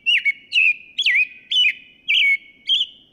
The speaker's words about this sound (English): Sounds a little like an American robin. Oh, come on, it's a perfect robin.